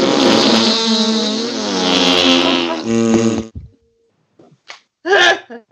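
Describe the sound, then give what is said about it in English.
Several voices blow loud, buzzing raspberry noises together on the count of three, imitating farts for about three seconds, then a few short sputters and one more brief blast trail off near the end. “So on the count of three, everyone fart as loud as they can.”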